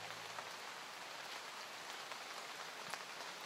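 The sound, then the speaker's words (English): Steady rain pattering on a hard surface, a dense continuous hiss with scattered sharper drips, even throughout, with no voices. “You are listening to rain sounds and ambient music, Soundscape for sleep.”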